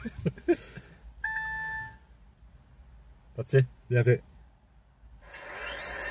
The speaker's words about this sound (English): So now, I'm going to listen to the Tesla Model S. Let's do it. And that's it. We're starting.